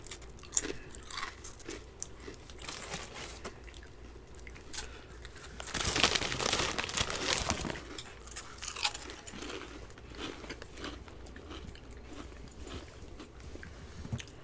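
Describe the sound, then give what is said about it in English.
Loud crunching of Ruffles mayonnaise-flavored potato chips with wet chewing and bites, plus occasional crinkling of a snack bag; a dense burst of bag rustling swells around the middle before settling back to steady munching. “Sorry for the crunching and the crinkly bags.”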